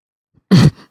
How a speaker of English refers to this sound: Yeah, I tried to stifle a cough and it came through every hole in my head.